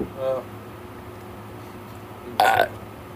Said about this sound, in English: We're burping.